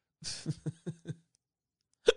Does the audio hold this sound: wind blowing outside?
no